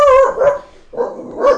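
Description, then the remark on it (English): A dog barks loudly at a neighbor mowing his lawn, two sharp bursts of barking separated by a brief pause, with no voices in the background. “The neighbor is mowing his lawn, and my dog hates that.”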